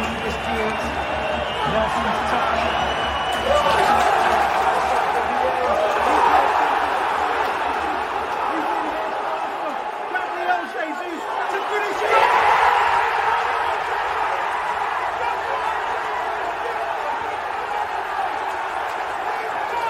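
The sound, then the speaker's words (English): A huge stadium crowd roars continuously for about twenty seconds as Gabriel Jesus slots the ball past goalkeeper Andre Onana to wrap up Arsenal's victory, heard from the press box, with loud surges of cheering and shouting voices rising out of the dense wall of noise. “You can hear me screaming in the background as well.”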